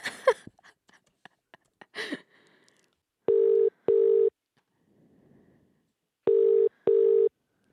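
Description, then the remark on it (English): A few quick keypad taps and clicks as a phone number is dialed, then the call ringing out in two double-burst rings, a steady tone repeating twice with a short pause between, clear with no talking. “I'm typing in her number.”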